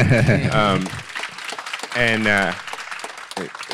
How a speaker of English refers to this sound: Yeah, and if you can applaud.